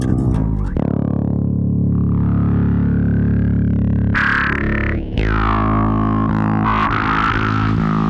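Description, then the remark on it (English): A distorted bass guitar growls through a filter pedal: a long, thick sustained low note with buzzing harmonics, then sweeping, wah-like filtered notes that shift in tone toward the end. “We're adding distortion.”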